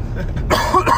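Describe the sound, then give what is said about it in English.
A single cough bursts out after a brief low rumble, sharp and fairly loud, with a rough throaty edge trailing off. “I should get a cough button for this.”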